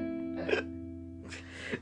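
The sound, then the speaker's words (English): Two quiet, abrupt hiccups from a woman trying to speak, about a second apart, the second one breathier and more drawn out, over a steady low electrical hum with no talking. “Just random hiccups when she's trying to speak.”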